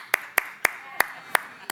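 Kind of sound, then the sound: crowd, audience clapping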